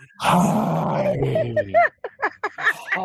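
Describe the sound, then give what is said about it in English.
A person lets out a long, loud growling roar imitating a dinosaur, followed by a few shorter guttural grunts and vocal noises. “It's just like dinosaur noises over here.”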